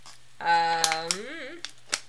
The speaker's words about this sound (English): Your water bottle was very loud. I mean, not as loud as mine, but...